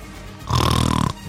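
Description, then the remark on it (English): A person makes a single loud, rough snorting noise with their voice, a guttural, rattling burst lasting about half a second, with no talking around it. “Mike Zimmer did not snore. He more snorted.”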